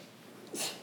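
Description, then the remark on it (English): A single quick sneeze bursts out, a short breathy hiss of air that fades within a moment, with no talking. “Bless you.”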